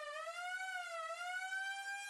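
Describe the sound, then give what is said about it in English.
A wailing police siren, approaching, holds a rich, steady tone that slowly rises and dips in pitch, fairly loud and continuous throughout, with no voices present. “And then I hear the sirens. They're on their way.”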